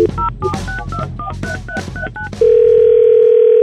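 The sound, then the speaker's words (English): A quick run of about nine touch-tone dialing beeps in an uneven rhythm as a phone call is placed during The Neighbor Dispute segment on Froggy 92.9 radio, followed by a loud, steady, unbroken telephone tone that holds to the end. “Today on The Neighbor Dispute, Barry's going to call Elaine.”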